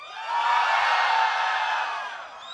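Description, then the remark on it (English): A large live audience cheers and whoops loudly for the team T1 in a sustained roar, many voices blending into a dense wall of sound that swells and then slowly fades over a few seconds. “Tomorrow, how many of you are going to be cheering for T1?”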